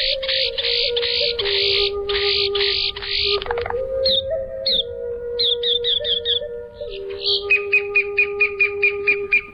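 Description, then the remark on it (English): Boat-tailed grackle calls: a run of loud, harsh, grating bursts, then a sharp squeal and a quick string of clipped, rattling notes, with steady background tones underneath. “The bird is the boat-tailed grackle.”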